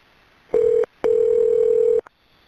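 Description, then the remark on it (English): A telephone ringback tone heard while a 911 emergency call is being transferred to Greenwood: a short steady mid-pitched beep, a brief gap, then a longer unbroken ring of about a second, loud and clean with no one talking. “Okay, hold on just a second. I need to transfer you.”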